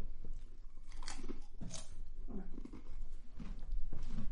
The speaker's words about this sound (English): Loud crunching noises for all you listeners. ASMR. Non-relaxing noises. Yeah. Noises that put your teeth on edge. Sorry, guys, but that was too big to fit in my mouth in one go that quick.